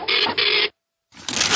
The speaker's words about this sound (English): Ooh, run that printer up, John.